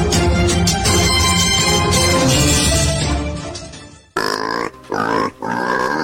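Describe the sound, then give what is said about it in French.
Loud pig grunts and squeals come in three close bursts after a dense, noisy stretch of sound. They are up front and prominent, with no talking. “Attention, attention, éleveur cochon, machin de cochon, tankou viande cochon”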